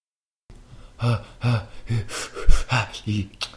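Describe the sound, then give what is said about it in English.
A man breathes heavily and theatrically, trying to calm down, with a run of loud, rhythmic in-and-out gasps about every half second and a burst of voiced exhaling mixed in. “I'm trying to calm down with breathing.”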